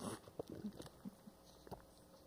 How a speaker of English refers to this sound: I hate it when speakers drink water.